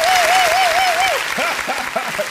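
A dense, steady round of applause fills the whole clip, with a wavering whistle-like tone over it at first, followed by a few short, bright whoops.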